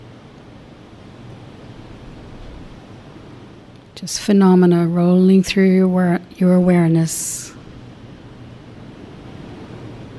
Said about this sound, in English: Maybe just listen to the sound of the ocean, sound of my voice.